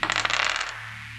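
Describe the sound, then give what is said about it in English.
Two small six-sided dice clatter and tumble across a hard surface in a quick burst of rattling clicks that fades out after about half a second, leaving near silence; the roll totals 12. “A 12 on the dice.”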